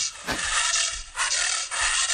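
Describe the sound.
A person imitates excited snorting and snuffing, with three rough, breathy bursts of air, each sweeping down in pitch, roughly half a second apart, loud and with no speech.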